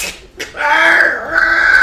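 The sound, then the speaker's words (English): A person voices a harsh, shrill creature screech, starting with a brief sharp cry and swelling into a loud, sustained wail that holds for over a second, alone. “You all hear this terrifying screech resonates in your ears.”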